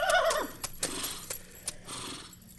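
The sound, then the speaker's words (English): A horse pulling a buggy gives a short, descending whinny, followed by a few slow, irregular hoof clops on a hard surface, with a steady rolling rumble underneath. “How do you explain that little boy, the sun in the middle of a storm, the horse and buggy?”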